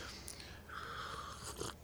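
A quiet sip of coffee, a soft slurping draw lasting under a second, followed by a faint swallow and small mouth noises, with no talking.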